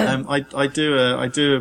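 A voice imitates a series of coughs and throat clearing, put down to hay fever getting to the chest: four or five short, voiced, rasping bursts in quick succession, fairly loud, with no other sounds around them.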